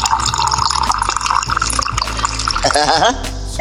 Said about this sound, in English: I hear you pouring into a cup too.